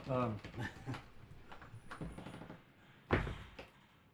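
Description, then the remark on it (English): A sauna door opens and swings shut as someone leaves to go cool off, a soft bump followed by a louder thud a second later, with a voice talking briefly beforehand. “I got to go cool. I can talk through the door.”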